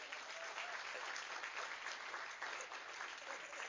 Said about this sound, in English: Give them a round of applause, y'all.